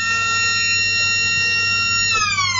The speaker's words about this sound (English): As the siren sounds for quarter time here at St Mary's Oval in Geelong.